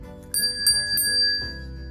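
A small Belkin hand bell, the same model used in It's a Wonderful Life, rings out brightly three or four times in quick succession, its clear metallic tone lingering and fading afterward, with no one speaking.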